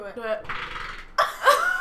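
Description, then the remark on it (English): A short, buzzy fart followed by a breathy rush of noise, then people react loudly with exclaiming and laughter. “I have to fart again.”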